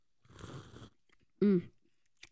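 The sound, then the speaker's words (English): A brief slurping sip of Cupcake prosecco sparkling wine, followed by a loud, satisfied vocal exclamation and a faint click near the end. “We got to take a sip and let them hear it.”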